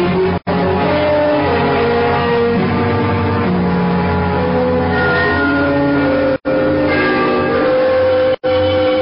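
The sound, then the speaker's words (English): The bells of Trinity, at the lower end of the city, chime the three-quarter hour at a quarter to midnight, loudly and continuously, their rich overlapping tones ringing out in a dense wash with a couple of brief breaks. No voices are heard. “The bells of Trinity had just run the three-quarter hour.”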